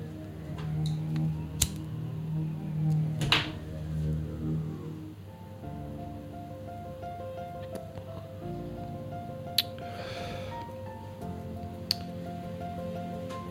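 Wet, soft squelching and squishing of dog poop plays out over several seconds, with a few sharp clicks and ticks scattered through it, like something mushy being pressed. No one speaks.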